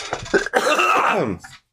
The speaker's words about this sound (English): And we are here tonight for our CGI-enhanced coughing